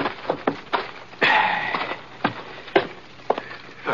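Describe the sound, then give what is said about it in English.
The hooves of Scar, a horse, clip-clop in sharp, uneven knocks that spread further apart and slow to a stop as he is pulled up at the hitching rail in front of the sheriff's office in Quiet City. There is a brief rush of scuffing noise partway through and no voices. “Anyhow, I headed Scar over to the hitching rail in front of the sheriff's office and pulled up. Whoa, Scar. Whoa.”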